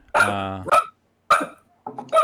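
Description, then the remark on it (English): A small dog yaps a few times: a drawn-out, whiny bark followed by two sharper, high-pitched yips, loud and clear with short pauses between. “There's an older lady with a small dog waiting for the husband to come out.”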